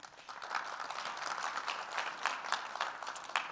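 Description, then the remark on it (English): An audience applauds steadily for a few seconds, a dense patter of many hands clapping at once with sharper individual claps popping out of the wash. The applause is moderate in level, with no voices. The applause is for the firm Autodesk. “I don't know if we have anybody from Autodesk in the room, but big applause for Autodesk as well.”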